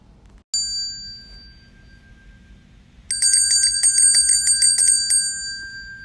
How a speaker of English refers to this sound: Well, that sounds like the bell.